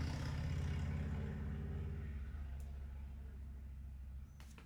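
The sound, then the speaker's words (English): A motorcycle roars past outside, its engine loud and throaty at first, then steadily fading into a low rumble as it moves away. “I think everyone likes hearing a motorcycle go over him, but I think it's fine.”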